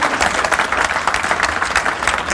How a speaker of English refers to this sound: y'all come on up, and let's give them one more round of applause if we could.